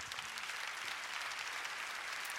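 An audience claps steadily, a dense, even wash of many hands with no breaks and no voices standing out, holding at a moderate level throughout.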